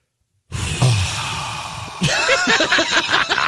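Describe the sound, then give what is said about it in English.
A voice mimics a big yawn: a long, breathy inhale rises into a drawn-out, wavering groan as the mouth stretches open, heard alone with no talking. “I was burping or yawning nonstop. When you did not burp, all I heard was this.”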